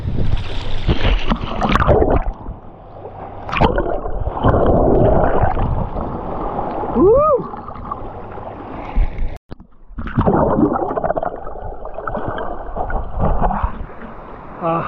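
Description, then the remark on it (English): Muffled, churning roar of water as a small ocean wave rolls over a swimmer who dives under it, loud, with a brief dropout midway before the turbulent rush resumes. “All right, we got another good one coming. See if I can get under it.”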